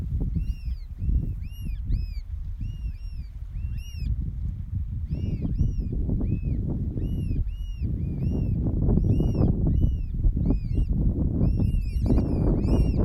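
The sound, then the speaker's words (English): Repeated high, arching chirps and whistles of birdsong come in quick bursts throughout, layered over a steady, loud low rumble that never lets up. “It's more about listening to the quality of the birdsong.”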